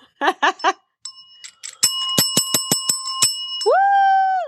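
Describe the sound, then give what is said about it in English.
A small hand-held praise bell rings out in a quick burst of about seven bright strikes, its metallic tone sustaining and blending, after a few short tonal chirps at the start. “Give your praise bell?”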